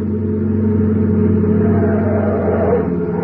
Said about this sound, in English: car coming up that highway now. Yeah, it sure looks like it. Boy, they must be doing 90.